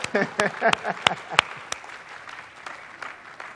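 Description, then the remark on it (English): A burst of sharp hand claps in a quick, uneven rhythm as the speaker claps for themselves one morning, thinning out to a few scattered claps, with faint voices murmuring underneath. “If you won't clap for me, I'll clap for myself this morning.”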